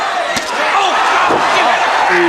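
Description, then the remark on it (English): Lex Luger slams a steel chair, ring announcer Gary Capetta's chair, into Flying Brian Pillman with a sharp, loud crack, followed by another impact, all over the steady roar of a large arena crowd and indistinct voices. “Oh, he's got a chair. Let's listen to this.”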